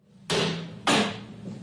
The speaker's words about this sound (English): the video of him seemingly intoxicated in the early morning hours, smashing cabinets, kicking doors.